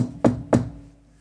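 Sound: knocking on wood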